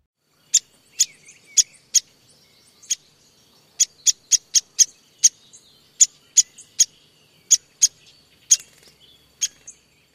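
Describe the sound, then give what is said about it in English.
A downy woodpecker gives a long series of sharp, high pik calls, about twenty crisp single notes at irregular intervals, clear against a quiet background. “Downy woodpecker's other call is a sharp pink.”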